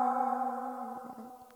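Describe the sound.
A voice holds a steady, ringing note that slowly fades, imitating an echoing reverb tail, with a few soft clicks near the end. Fairly loud, alone without other talk.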